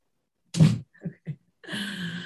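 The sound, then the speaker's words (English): A pet dog at home lets out a loud, sharp burst and two short yips, then breaks into a sustained, rich-toned howl that holds steady to the end. “My dog howls like hardcore, as you just heard.”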